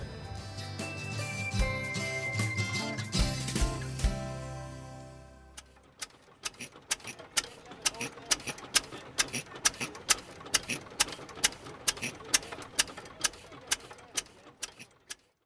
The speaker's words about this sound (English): we're here looking at a motor and an engine. Can you tell me a little bit about it? It's a Ruston and Hornsby, made in 1925, 4 horsepower. So it's nearly 100 years old and still working like today